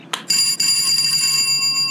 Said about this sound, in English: Okay, I'll ring the buzzer.